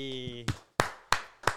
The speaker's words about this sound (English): A round of applause